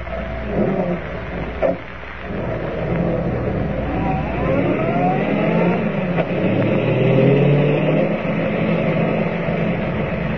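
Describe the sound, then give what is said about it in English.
A car engine runs steadily and loud throughout as the car drives to an abandoned gold mine, revving and climbing in pitch as it accelerates and shifts, with no voices present. “Driving to the abandoned gold mine, Clark Kent and Ed Jenks enter the shaft through a creaking door which hangs from one rusted hinge.”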